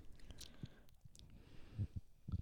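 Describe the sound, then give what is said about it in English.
Quiet mouth sounds of someone sipping a fizzy soda: a few soft slurps and gulps spaced unevenly, with faint hiss in the background and no talking. “Now we're sipping.”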